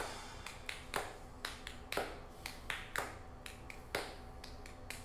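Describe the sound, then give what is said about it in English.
Steady rhythmic hand clapping in a played recording of a song, with sharp louder claps about once a second and lighter claps in between, crisp with no voices over it. “She starts clapping.”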